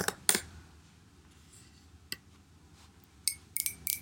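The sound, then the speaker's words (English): Sharp, clicky taps of long, claw-like nails typing on a keyboard while looking up a name, coming in a few irregular bursts with quiet pauses between them, fairly soft, with no voices. “Sorry, my nails are super, like, claw-like right now, so I have a hard time typing sometimes.”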